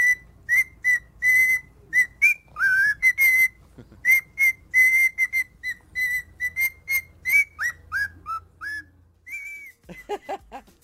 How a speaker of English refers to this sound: Parrot sings jingle bells to dog. Take a listen.